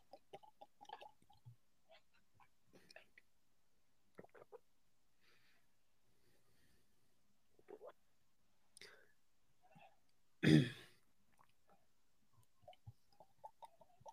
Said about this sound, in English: you're guzzling water over there like a fucking camel. All right? It's picking up on the mics. Get a straw.